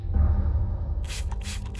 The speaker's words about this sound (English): Police acquire a search warrant for the warehouse and spray the floor and walls with luminol, a chemical that makes blood glow under a UV light.